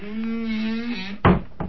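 A steady low hum gives way to an office door swinging shut with a solid thud, followed by a softer knock a moment later as it settles.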